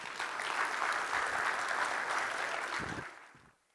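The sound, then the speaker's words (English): A crowd applauds steadily for about three seconds to welcome two elders as speakers, a dense wash of many hands clapping at even volume, then quickly tapers off into quiet. “let's welcome with a hand clap Grant Baustead and Marty Friesen.”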